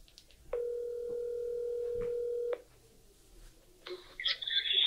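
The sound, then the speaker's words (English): One steady ringback tone of an outgoing phone call to a gambling expert sounds for about two seconds, clear, followed by a quiet pause and then a brief burst of higher, scratchy line noise. “Yeah, I was planning on surprising a guest with a phone call and asking them this question.”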